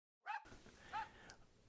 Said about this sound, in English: Is that, what is... Is that a dog in that car?